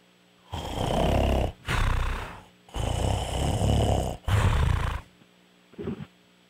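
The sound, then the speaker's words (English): A man snores loudly over the phone, four long rasping breaths in quick succession followed by a short, softer snort, with no talking. “I don't hear the big snore, though.”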